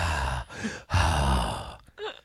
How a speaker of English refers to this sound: Sorry if I'm breathing too heavy into the mic. I just noticed that.